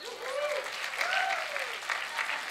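An audience at a teaching session claps steadily for a couple of seconds for three volunteers called to the front, a dense patter of hands with some voices calling out over it.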